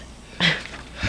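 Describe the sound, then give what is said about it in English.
A single abrupt sneeze bursts out with a hissy, breathy rush, then trails off and is followed by a brief low snuffle. “I'm going to sneeze.”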